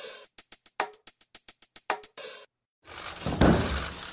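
A quick run of crisp, papery flutters, then a brief pause before a single heavy, dull thud of the thick proposed 2021 U.S. government budget document, released by the White House, being put down on a table, followed by a noisy rustle.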